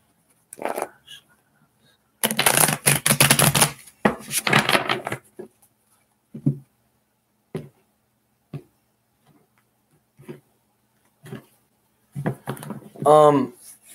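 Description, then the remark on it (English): A deck of tarot cards being shuffled: a loud burst of rapid crisp riffling, then a few scattered soft taps as the cards are squared, with a brief voice near the end. “One more shuffle, actually.”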